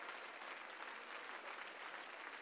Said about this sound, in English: And if you can do that, clap your hands one more time unto the Lord.